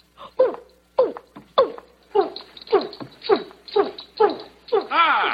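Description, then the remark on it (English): A person imitates an orangutan with a quick, steady series of about nine loud hooting calls that sweep up and down, ending on a longer drawn-out cry. “Make a noise like an orangutan.”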